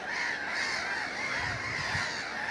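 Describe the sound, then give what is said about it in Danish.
A large flock of gulls calls overhead in a dense, continuous chorus of overlapping squawks and cries, loud and steady throughout with no voices present. “Der er også stormmåger. Og det er simpelthen at se de her måger.”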